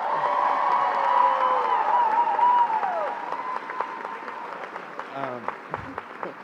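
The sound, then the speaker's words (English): A crowd applauds steadily with scattered cheers and whoops, the clapping thinning out toward the end as a few voices call out over it. “You can clap for that as well.”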